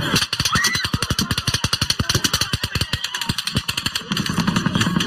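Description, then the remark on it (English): A played-back recording of rapid automatic gunfire: a loud, fast, steady stream of sharp cracking shots lasting several seconds, the tone shifting to a lower droning rattle toward the end. “There would be an echo for every round shot.”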